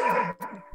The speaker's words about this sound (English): That's my dog telling me it's... Hold on.